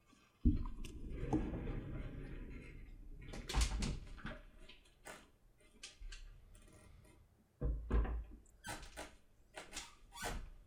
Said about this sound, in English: Hold up, I gotta close my door.